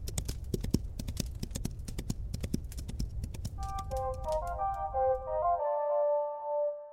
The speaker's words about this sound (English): The horse allows her to mount it, and Arya gallops out of the smouldering remains of King's Landing.